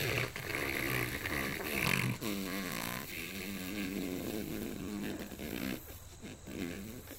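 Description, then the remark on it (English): A person blows wet, buzzing raspberries with their mouth, imitating fart noises in a continuous, wobbling stream for several seconds, loud. “They just make fart noise?”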